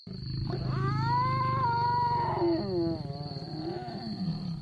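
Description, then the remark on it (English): A lion on the South African savannah lets out one long, strained roar, rising and then sliding down in pitch over several seconds, loud with a deep, rumbling growl underneath. “From the strained roar of a lion, to the unearthly hoot of an owl.”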